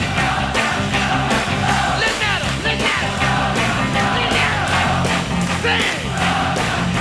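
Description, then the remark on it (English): A live concert crowd at a singer's show in London screams, cheers and sings the chorus by themselves loudly over booming guitar music, a dense, continuous roar of many voices that fills the whole stretch without pause. “The crowd's crazy. They're singing the chorus by themselves.”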